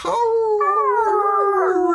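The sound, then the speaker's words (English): A dog in a video game whines in one long, high, mournful note that jumps up in pitch partway through, wavers, then slowly sinks. It is loud and steady, with no talking over it. “I love the conversation with the dog.”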